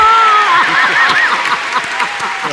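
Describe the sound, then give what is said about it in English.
An audience at a talk applauds steadily for a few seconds after the phrase gender equality is said, the dense clapping fairly loud, with a high voice briefly calling out above it near the start. “So, I am very proud of myself to be able to do that, actually, and also to hear your clapping, yes.”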